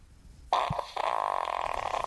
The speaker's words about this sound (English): I'm going to play you a fart.